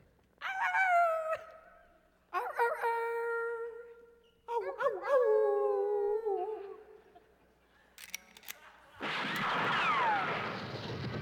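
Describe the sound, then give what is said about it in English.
Three volunteers from a studio audience howl like coyotes in turn, long wavering yips and wails rising and falling, followed by a burst of broad noise like applause or crowd clamor. “Due to a labor dispute involving extra table scraps and bad meat, the part of the Three Coyotes in tonight's opening will be played by three volunteers from the studio audience.”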